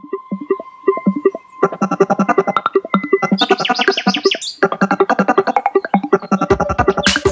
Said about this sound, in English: This tune even features birdsong.